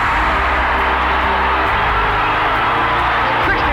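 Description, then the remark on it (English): A basketball arena crowd at a Nebraska–Kansas game cheers in a loud, sustained roar after a Nebraska layup puts the Huskers ahead 62-55, a dense wash of voices that holds steady for several seconds without letting up. “Listen to this crowd!”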